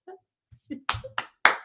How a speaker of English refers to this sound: There's clapping. Remember the clapping?